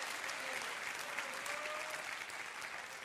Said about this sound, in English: Somebody needs to clap your hands real big, because we are moving into a realm of the Spirit.